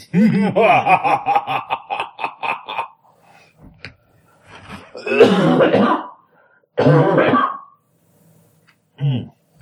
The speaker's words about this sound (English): I turn away from the microphone to cough, in accordance with the prophecy.